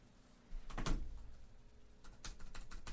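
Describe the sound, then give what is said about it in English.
Scattered clicks of keys being pressed on a computer keyboard, a few quick taps in small bursts over a low background hum, moderately loud. “Oh, I have to type...”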